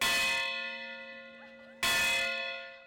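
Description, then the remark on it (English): A large bell, the Freedom Bell rung at the West Virginia state capitol for Martin Luther King Jr. Day, strikes twice. Each toll rings out with a bright metallic attack and a long, slowly fading harmonic hum, the second strike arriving about two seconds after the first. “Another MLK Day state capitol tradition, the Freedom Bell Ring. This year, with anti-racism and transgender among human rights issues facing West Virginians, that bell rings with passion and purpose.”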